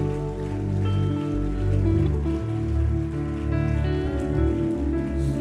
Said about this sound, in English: Would you clap your hands and give Him a high praise?